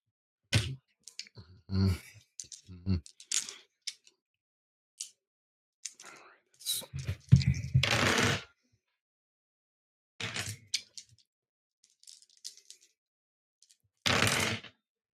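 Dice clatter and rattle in several sharp bursts during a tabletop role-playing game, with one longer tumbling roll midway and another quick roll near the end, separated by stretches of quiet.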